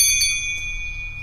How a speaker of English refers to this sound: Double bell. Is it a new bell? It's the double one, bell? Yeah, double bells.